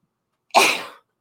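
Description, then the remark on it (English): A single sharp sneeze from hay fever bursts out suddenly after a moment of silence, then trails off quickly. No talking accompanies it. “Bless you.”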